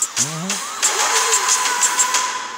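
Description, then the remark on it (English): A car engine cranks and catches, then settles into a steady running hum with a faint, regular ticking on top, moderately loud, as the car starts and drives off. “He go in his car. Car start driving.”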